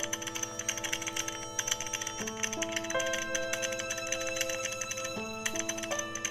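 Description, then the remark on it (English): Rapid, continuous clicking of typing on a computer keyboard, typing out that a woman was a fashion textile designer, with sustained electronic tones shifting pitch in steps behind it; no one speaks. “Yeah, and here they are typing that this lady was a fashion designer, fashion textile designer.”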